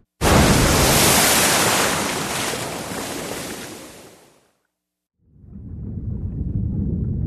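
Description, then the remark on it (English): A huge roaring crash of a burning aircraft falling from the sky into Lake Michigan during a lightning storm bursts in loudly and washes out over several seconds, then a brief silence gives way to a muffled, low underwater rumble. “purple-white sparks blinded my vision before crashing into the depths of Lake Michigan.”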